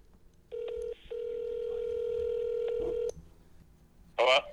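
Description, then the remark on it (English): A phone call being dialed: a steady electronic tone sounds for a few seconds, broken once by a brief gap, then a short burst of a voice at the end. “We're using your phone.”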